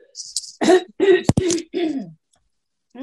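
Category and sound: human body sound, coughing and throat clearing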